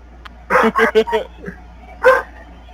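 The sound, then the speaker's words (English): A quick run of four loud, voiced barks, then a brief pause and one more bark, clear. The barks sound like a person imitating a dog. “Yes, Doggo, I agree.”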